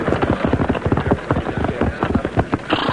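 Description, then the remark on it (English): The hooves of a few mounted soldiers' horses riding on patrol on the beach at Santa Marta, Colombia, clip-clop steadily, several animals walking at once so the sharp, hollow hoofbeats overlap in a busy, uneven rhythm that carries on throughout at a moderate, even loudness. “A boat, bearing a sick man on a litter, is lowered over her side, and the sailors row for the beach where a few mounted soldiers ride on patrol.”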